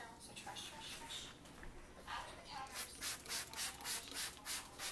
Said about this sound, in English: I did give myself some time for trash, but I actually don't have any trash. So, since I don't have trash, I am going to spray my counters.